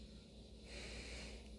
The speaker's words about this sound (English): So grab your throat chakra crystals, whatever, get in your comfortable position in place and start breathing in your nose.